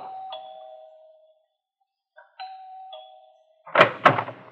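doorbell ringing

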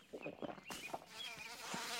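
bee buzzing

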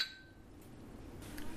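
beer glasses clinking

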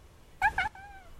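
cat meowing

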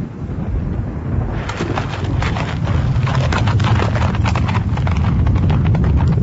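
horse hooves clip-clopping

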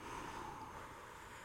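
long

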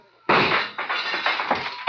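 gunshots

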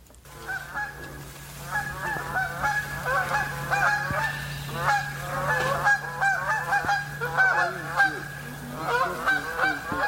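canada geese honking

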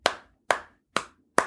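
slow clap

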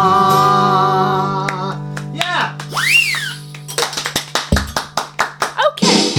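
hands clapping

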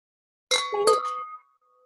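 wine glasses clinking

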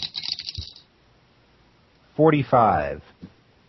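dice being rolled

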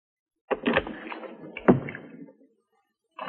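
door being opened

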